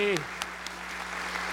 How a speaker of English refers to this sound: Happy Father's Day. And let's give a round of applause to all those fathers in our midst. Yay.